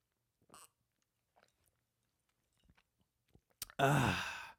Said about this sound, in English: I'm going to pause for a little sip of my gourmet iced coffee.